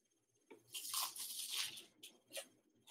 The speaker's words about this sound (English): And take a bite so we can hear the crunch, because people are going to not really understand. This is incredible. So here we go.